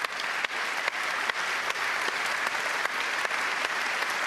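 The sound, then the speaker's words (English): Sustained audience applause at an award ceremony, celebrating the Spanish women's football team after the World Cup; a dense wash of many hands clapping at steady loudness for several seconds, with a few sharper claps standing out now and then and no voices. “I was going to ask you to give this applause afterwards, but this team deserves to be celebrated and deserves to be listened to.”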